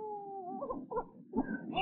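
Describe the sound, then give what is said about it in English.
A child cries in a run of wavering, high-pitched sobs and whimpers, broken into short bursts that rise and fall, rather loud, with no talking. “You must not cry, my son.”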